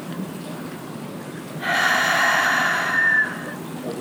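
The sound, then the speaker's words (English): A single deep, hissing breath drawn in through parted teeth to take in more oxygen, lasting under two seconds, with quiet room noise before and after. “And just feeling how effortless it is as you part your teeth to breathe in a little bit more oxygen.”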